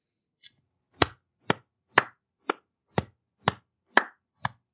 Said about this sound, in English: Can that be heard on the mic? Yes. Yes, it can. Golf clap, yeah.